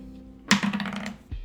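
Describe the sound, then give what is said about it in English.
A quick clattering rattle of dice tumbling across a hard table, a sharp initial hit followed by a second of bright, rapid clicks before settling, with no talking, as a player rolls to jog their memory. “Can I roll to see if it's so that I can jog my memory?”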